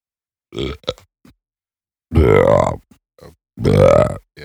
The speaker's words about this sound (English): Some good burps there. Some good thank you burps.